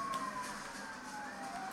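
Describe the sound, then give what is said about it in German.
Police car sirens wail continuously, a steady high tone drifting slowly downward in pitch over a dense, rushing background noise, with no voices. “Wow, krass. Okay, die machen richtig Alarm.”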